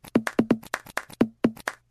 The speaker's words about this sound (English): it sounds like somebody slapping their bag, actually. I wonder if our jingles department can put something together to that beat. Let's listen to it again. It sounds like when I slap my bag.